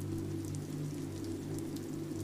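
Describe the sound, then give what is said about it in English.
Steady heavy rain patters on skylights overhead in London, a constant dense hiss with faint scattered droplet ticks over a low steady hum, no voices. “Raindrops fall heavier on skylights, their patter persistent.”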